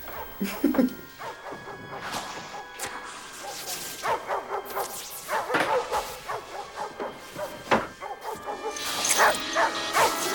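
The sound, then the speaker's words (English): A dog barks repeatedly in sharp, uneven bursts, mixed with higher yips and a few whimpering sounds, moderately loud, with no one talking. “Didn't that dog actually bite someone?”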